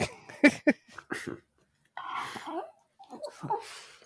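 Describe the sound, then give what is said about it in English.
A dog's drawn-out yawn, picked up by a microphone, with a breathy, squeaky rising-and-falling whine, followed by a second shorter yawning sound, after a few quick snuffling breaths and mouth noises. “That was my dog yawning.”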